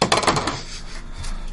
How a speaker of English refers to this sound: I need some dice, y'all. There's a whole bucket of them. Bucket of dice. Here are some dice. Not charging for the dice.